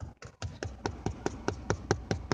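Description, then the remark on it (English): Rapid knocking on wood, about a dozen sharp, dry raps in a steady, even rhythm lasting a couple of seconds, with no talking over them. “And I'm not trying to be negative, as I'm a knock on wood right now.”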